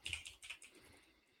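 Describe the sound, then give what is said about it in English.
A short burst of typing on a computer keyboard while searching Google for the title of the third Friday movie: several quick, crisp clacks of keys in an uneven rhythm, fairly soft, tapering off toward the end with no voices. “I think, let me Google it real quick.”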